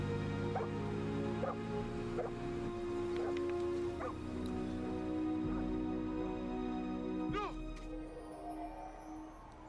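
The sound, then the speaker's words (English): A dog barks repeatedly in short, irregular yaps over a steady droning background; one bark near the end rings out louder than the rest. “Hey, is that the same dog?”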